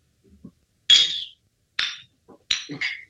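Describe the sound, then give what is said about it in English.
Glasses clink together in a toast: three sharp, bright chimes spaced about a second apart, the last one a quick double tap, each ringing briefly before fading, with no talking. “All right, cheers, everybody. Cheers. Sip. Tink.”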